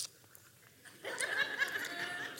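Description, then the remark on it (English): A person imitates a bus driver chewing gum while driving a huge 60-seat bus, with wet smacking and clicking mouth noises, starting after a moment of near silence and continuing steadily to the end. “He chews a piece of gum while he drives, and he's driving this huge bus.”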